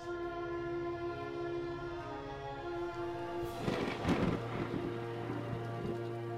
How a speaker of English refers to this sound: Oh, and dress for bad weather. There's a storm blowing in, and it's certainly not a coincidence.